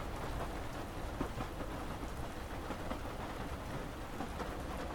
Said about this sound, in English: Gazing out into the shimmering rain, you are glad for its comfort.